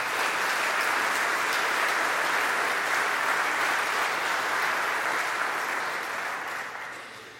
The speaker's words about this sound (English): I also want to thank the staff of the cathedral for hosting us today, the dean and his staff, and the altar guild of the diocese who sewed these wonderful red stoles that the deacons will get today. So let's have a hand of applause for them as well.